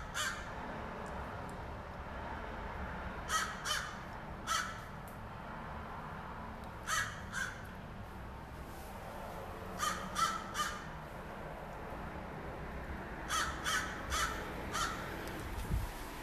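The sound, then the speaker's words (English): Several crows caw in loud, harsh bursts, often in quick pairs or triplets, calling back and forth over a steady outdoor rumble with no one speaking. “It's been a while since I've heard intense crow discussions.”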